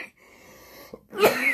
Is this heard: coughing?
yes